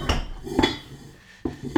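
A squeaky chair being shifted and swapped for another chair, producing four sharp, fairly loud knocks and clattery thumps spaced irregularly, with brief metallic ringing and no voices.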